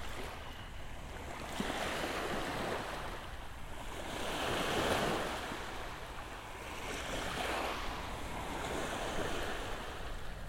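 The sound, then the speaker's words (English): Ocean waves wash steadily onto a shore, broad rushing surges swelling and receding in slow cycles, with some wind noise mixed in. No voices are present. “Listen to the waves.”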